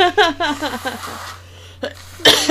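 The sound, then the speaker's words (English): Rhythmic laughter fades into a quiet pause, then a short snort and a loud, blustery nose blow burst out at the end over a low steady hum. “Here, while we're all laughing and stuff, let me blow my nose real quick.”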